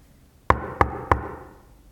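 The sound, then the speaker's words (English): Three sharp knocks on a wooden door in quick, even succession, each with a short resonant decay, standing alone without any voices; Little Red Riding Hood knocking at Grandma's door in a telling of the tale. “A knock at the door.”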